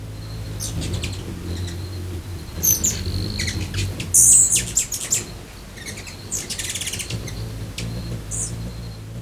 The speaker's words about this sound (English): Today's topic is hummingbirds. If you have a hummingbird feeder at home, you might recognize this sound.